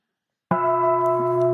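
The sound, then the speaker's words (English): A single strike on a large meditation bell at about half a second, followed by a rich, steady ringing tone with layered overtones that sustains loudly and evenly to the end, with no voices. “It looks like you have to really bang it because it's a big bell.”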